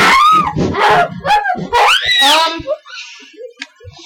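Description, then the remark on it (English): A dog banging its stomach against a file cabinet cries out in pain with a quick run of loud, high-pitched wailing yelps, about five pained calls close together, then trailing off into faint whimpers and scattered small noises. “And he's howling in pain.”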